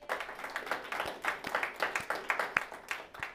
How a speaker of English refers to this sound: So first of all, give yourselves a round of applause for showing up today.